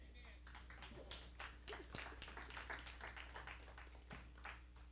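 A church audience claps steadily for several seconds, a dense, irregular patter of sharp hand claps over a low constant hum, with no clear talking on top.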